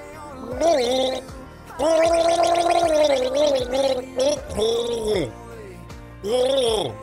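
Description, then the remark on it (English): A voice gargles its way through a tune, warbling, bubbling notes in several long bursts with short pauses between, fairly loud and with no talking over it. “It's not gargling water, yeah, but...”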